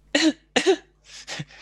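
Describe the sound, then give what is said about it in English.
A guinea pig gives two sharp, high-pitched coughs close together, followed by three quicker, softer coughs trailing off, with no talking. “They sound very cute, Andy. They have a very high-pitched cough.”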